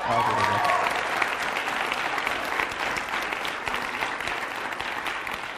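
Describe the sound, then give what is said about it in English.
A crowd claps steadily in appreciation of Dr. LaFountain's Wednesday message, the dense applause filling the whole stretch at a fairly even level, with a brief voice heard faintly at the very start. “One person applauded Dr.”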